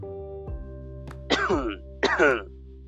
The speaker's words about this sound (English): I had to cough a little bit.